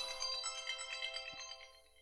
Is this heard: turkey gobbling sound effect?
no